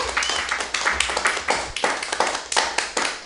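A crowd applauds with dense, overlapping hand claps that keep a fairly steady loudness for a few seconds, bright and crackling, with no voices on top.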